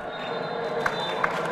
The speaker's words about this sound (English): The 1-1 draw was met with slow claps and a few half-hearted whoops. But fans of the US and the Netherlands didn't feel too let down.